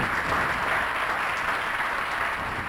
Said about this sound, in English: Round of applause. Yeah. Thank you.